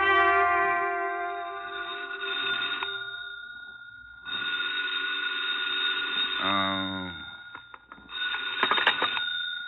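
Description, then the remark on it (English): A telephone bell rings loudly in long, bright, jangling bursts separated by short pauses, with no voices. “My half-conscious musings didn't move me forward any, but the phone call that awakened me did.”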